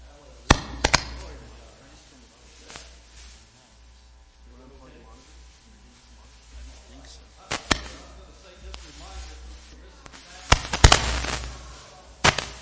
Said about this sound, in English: We're having fireworks.